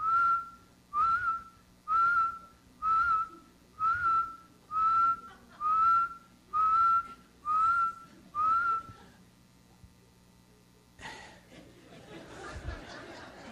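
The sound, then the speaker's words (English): A 6-year-old boy whistles the same short, steady note about nine times in an even rhythm, clear, followed by a brief burst of muffled chatter and laughter. “And for about a year and a half now, he's known how to whistle, but this is his whistle.”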